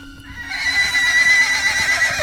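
A horse lets out a loud neigh, a shrill, quavering whinny that rises and holds for a couple of seconds with no voices present.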